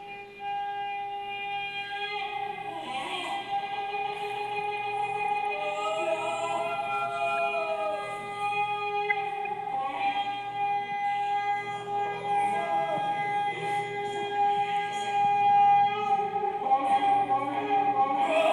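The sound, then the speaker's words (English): A shofar, a ram's horn, is blown in long, blaring, reedy blasts that bend up and down in pitch, with several horn tones overlapping steadily and loudly throughout, and no voices. “So the sound of the shofar there, quite supernaturally,”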